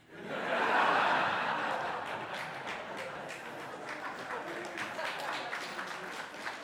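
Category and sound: crowd, audience applauding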